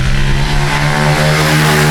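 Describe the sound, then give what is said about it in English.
A motorbike ridden by a kid doing laps revs loudly, holding a steady droning whine with a slight rise in pitch as it passes. No one speaks. “That's the same kid. Yeah. Coming from the just same way. Just doing laps, bro.”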